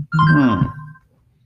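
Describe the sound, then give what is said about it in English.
A short electronic mobile phone ringtone chirps once, a bright tonal burst with steady high notes lasting under a second, clear, then fades into quiet. “I thought I told you to keep your phone quiet. That was your phone, so.”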